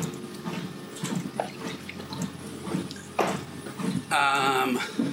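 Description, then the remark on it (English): Water is poured for a drink, running and splashing steadily for several seconds, ending in a brighter, higher-pitched stream as if filling a container. “It's just to have some more water.”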